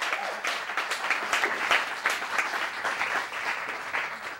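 A studio audience applauds steadily, a dense wash of many hands clapping at moderate volume that holds evenly for several seconds without any voices over it.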